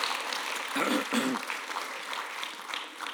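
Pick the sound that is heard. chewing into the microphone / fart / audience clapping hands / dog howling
audience clapping hands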